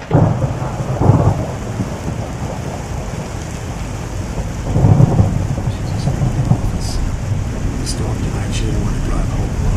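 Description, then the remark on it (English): Steady, dense rain hisses throughout, with two deep rolls of thunder rumbling up, one early and one midway, during a heavy thunderstorm. “Look, help me set up some buckets to catch the rain before you go.”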